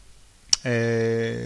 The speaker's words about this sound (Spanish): Otra vez, no hagas ese ruido. Perdóname, es que ese es un ruido natural de mi boca. ¿Me estás pidiendo que cambie algo? Es que estás haciendo un chasquido.